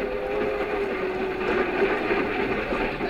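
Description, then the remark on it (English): A commuter train to the city runs steadily, its continuous rumble and clatter filling the space with a sustained humming tone riding on top. No voices are heard. “I used to ride the commuting train to my job in the city, and I got to know all the regular commuters who rode in the same smoking car.”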